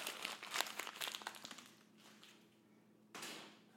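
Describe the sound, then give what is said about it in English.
Crisp crinkling of a page of paper notes being crumpled in quick bursts, easing off into a quiet pause before one last short rustle. “I just tried to do a cool throw paper over my shoulder thing.”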